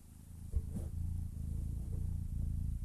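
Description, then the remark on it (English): A 10-week-old kitten named Lando, held up to the microphone, purrs right up against it, a steady low rumble pulsing rhythmically for about three seconds, with a brief bump near the start and no talking. “I got a kitten.”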